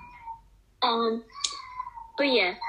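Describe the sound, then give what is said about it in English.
A young child cries in short, strained wailing bursts with wavering pitch, loud, separated by brief quieter gaps. “Please excuse the child crying.”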